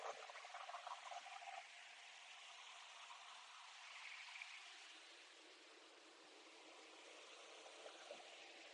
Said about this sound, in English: So my point is, if you can hear the majesty of this ocean, the power of the ocean, let it soothe you. Let it begin to cleanse the mind, if you're open.